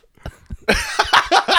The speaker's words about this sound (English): There it is, the comedy cough.